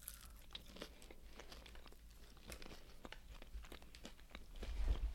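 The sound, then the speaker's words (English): Crunching of tater tots being chewed in a taste test of regular Kroger rounds, regular Ore-Ida, regular mini Ore-Ida and regular Publix tots, starting with regular Kroger; a steady run of crisp, irregular crackles and bites over a low rumble, with no talking. “Let's do regular Kroger rounds, regular Orida, regular mini Orida, regular Publix.”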